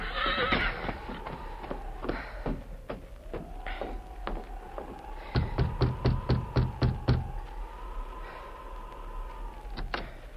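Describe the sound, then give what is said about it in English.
A horse, Victor, whinnies in a long, wavering call that runs nearly the whole time, while sharp hoof clops come scattered at first, then in a quick, steady burst midway, as its rider reins up at the back door of Mother Willard's rooming house in Frontier Town; no talking. “Dan Reed, young nephew of the Lone Ranger, left their camp in the Enchanted Hills and rode into Frontier Town. He reined up at the back door of Mother Willard's rooming house.”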